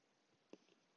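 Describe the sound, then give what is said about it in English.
A quiet sip of coffee: a soft, brief mouth sound followed a moment later by a slightly louder, slurpy gulp, with no talking. “Coffee sip.”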